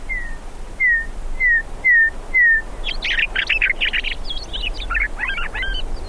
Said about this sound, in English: You haven't heard a bird till you've heard a meadowlark. And once you hear that, you never forget that.